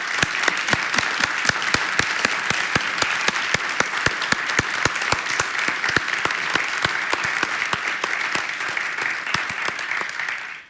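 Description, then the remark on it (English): An audience applauds a speaker at a talk before the question session, many hands clapping in a dense, even patter with sharp individual claps standing out, sustained at a fairly loud level for about ten seconds before cutting off. “But before that, could we all just give Yaba a round of applause?”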